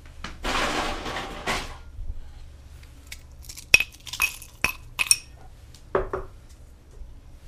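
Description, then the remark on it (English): Ice cubes drop into a glass for a whiskey cocktail, after four dashes of cocktail bitters: a brief rattling rustle, then about five sharp, bright clinks at uneven intervals, each ringing briefly before fading, with no talking. “Then we're gonna go in with ice.”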